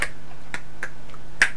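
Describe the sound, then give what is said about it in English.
Two people clap alternately, one after the other, in four-handed clapping: sharp hand claps in an uneven pattern, about five crisp smacks over a second and a half, one quite faint and the last one loudest, with no talking. “We could do it like one after the other. Four-handed clapping.”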